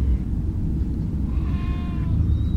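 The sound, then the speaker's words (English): A single goat bleat, brief and wavering, rises over a heavy, constant low rumble and fades after about half a second. No one speaks. “I want to see these alien goats that just made that noise.”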